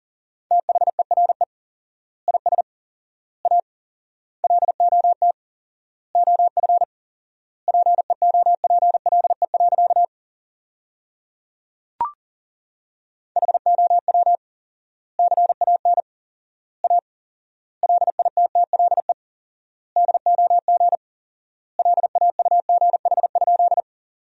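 Fast Morse code at 40 words per minute with 4x word spacing, sending sentences made from the top 500 words, as a single steady mid-pitched tone keyed in rapid bursts of dots and dashes with wide gaps between words, and a short silence midway broken by one click.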